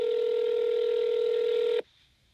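A telephone tone from an outgoing call to a completely random person: one steady, unbroken electronic note holds loud and clear for nearly two seconds, then cuts off abruptly into near silence. No one speaks.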